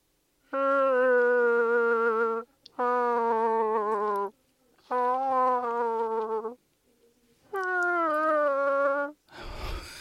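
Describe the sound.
An Alexa smart speaker, asked to talk like Chewbacca, plays Wookiee-style growls: four loud, buzzy, warbling roars, each about two seconds long and separated by short pauses, ending with a brief burst of noise.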